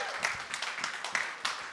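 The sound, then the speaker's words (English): A church audience claps steadily, a dense patter of many hands with a few sharper claps standing out, moderately loud, without any voices over it. “Last year, somebody can applaud that.”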